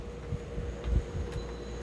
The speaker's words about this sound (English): I forgot the air conditioner was on, and that always makes for a bad podcast.